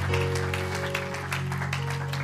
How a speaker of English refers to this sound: Give him another hand clap and shout of praise. What a great God.